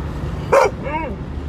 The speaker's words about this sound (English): Shut up. Keep your dog quiet, please.